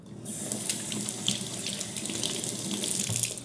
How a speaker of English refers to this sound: Well, this water that comes out of here is both whole house filtered and conditioned, and it's a salt-free conditioner.